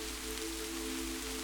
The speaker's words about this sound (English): This beautiful, soothing sound has been there during many moments in your life. Such as late nights as you lay awake in bed, listening to the rain gently dance on your roof.